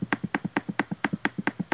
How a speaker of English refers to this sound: Who is clicking? Sorry. Are you playing that cookie game right now? No, actually, I was getting really mad at Google Docs. Again? Yeah, it wouldn't let me copy and paste something.